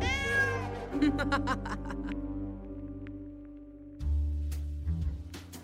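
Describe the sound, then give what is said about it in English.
A passing cat lets out a loud, drawn-out meow right at the start. Sustained musical tones and scattered clinks follow, then a sudden low rumbling swell near the end. “A volatile mixture is precariously placed, and now is agitated by a passing cat.”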